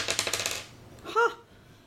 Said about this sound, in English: I rolled an 8. So it's 1d8 plus 4, so 8. And I rolled an 8. So 12 damage to them.